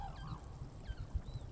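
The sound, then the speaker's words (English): Cranes call in a loose, overlapping chorus of honking, trumpeting cries, several birds over a low, steady background rumble, in the snow-covered wetlands of Kushiro National Park in windless weather, during the season of the dancing cranes. “It's the season of the dancing cranes.”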